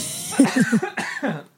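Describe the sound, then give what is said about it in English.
A quick run of about five harsh coughs in rapid succession, each a short raspy burst, with no talking around them. “Hold on. I have to cough.”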